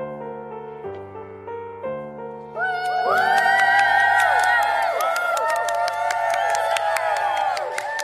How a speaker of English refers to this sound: Suddenly, Mary heard something up ahead. What's that noise? It sounds like shouting. Oh, I think it's coming from the hippodrome. The what? The hippodrome. It's the place where the Romans raced their horses.